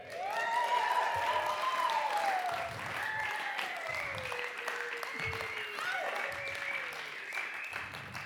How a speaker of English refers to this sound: So first up, can we have an absolutely thunderous evening community round of applause